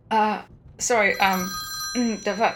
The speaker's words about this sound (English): And then he sends the message. Your phone rings. Oh god.